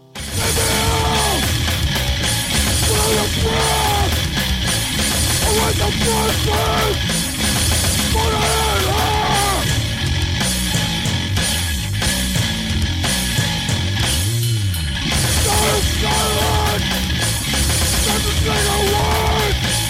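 A harsh, loud track of distorted bass and a relentless drum machine beneath screamed, yelling vocals, dense and unbroken from start to finish, played by a two-piece band.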